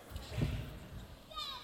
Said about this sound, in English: Kids are cheering for me. And that's how it went.